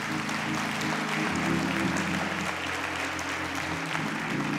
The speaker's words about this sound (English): And everybody shouted, amen. Amen. Give the Lord a hand clap of praise, will you?